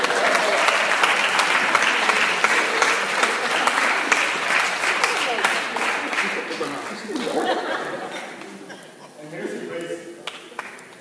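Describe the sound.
A crowd breaks into sustained applause, dense clapping holding loud and steady for several seconds before gradually thinning and fading, with some chatter and scattered voices mixed in.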